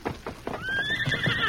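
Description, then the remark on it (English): A horse named Scout lets out a long, high whinny over a steady run of clip-clopping hooves, the hoofbeats falling in a quick, even rhythm throughout. “Big fella, easy. Steady, Scout.”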